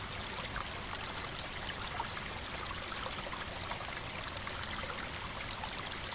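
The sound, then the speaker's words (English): A small stream snaking toward a main river in a clearing among trees trickles and babbles steadily throughout, a continuous, even wash of running water with soft, bright splashy detail and no voices. “In the distance, you spot a log lying on its side by what appears to be a small stream snaking its way toward the main river.”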